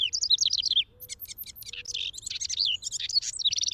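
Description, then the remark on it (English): A house wren's song pours out in rapid, bubbling trills and chattering notes, loud, with barely a pause over nearly four seconds and no voices. “There may be no busier bird during the nesting season than a male house wren, because just a day or so after migrating back north from the tropics, he claims a territory and sets to work checking out potential nest cavities.”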